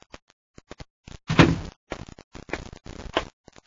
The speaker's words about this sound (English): As the door opens, he turns.